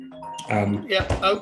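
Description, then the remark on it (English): A phone rings with a bright, melodic chime-like tone, sounding twice in quick succession as a voice talks over the second ring. “I promised I would talk about it, so he's calling on the phone.”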